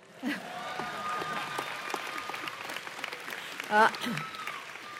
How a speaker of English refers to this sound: I feel particularly privileged to participate in a commencement at this university, one of the most dynamic and fast-growing on the West Coast. You can now applaud.